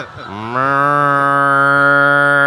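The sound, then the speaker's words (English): A cow lets out one long, loud moo that rises in pitch at the start and then holds steady, clear, with no other sounds around it. “I'll take that murder cow.”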